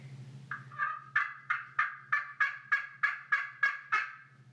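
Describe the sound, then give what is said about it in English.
A slate turkey call is scraped with a plastic striker in a rapid series of about eleven sharp, rasping yelps, fairly loud, over a low steady hum. “I'm going to pass around the slate call with the plastic striker”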